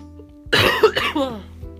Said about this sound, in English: My voice starting to clot, if that's appropriate to say. And I'm gonna start coughing soon. I can feel it.